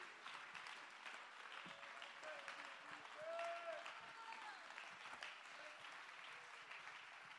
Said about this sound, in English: Oh, somebody clap your hand to give him praise.